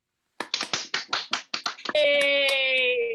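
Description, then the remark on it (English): About ten sharp hand claps in a quick, uneven run, sounding thin and slightly compressed: a round of applause over a Zoom call during 2020 pandemic campaigning in Alaska, then cut off by a sustained, steady tone. “I think that's the first time I ever asked for a round of applause on Zoom, but I think it worked.”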